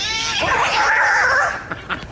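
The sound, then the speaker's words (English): A loud, wavering cat yowl rises and warbles for over a second, a shrill caterwauling scream like cats squaring off to fight, then breaks into a few short, fainter cries. “This cat keeps coming to our house and starting fights with our indoor cats throughout the day, but especially around 3 to 5 a.m.”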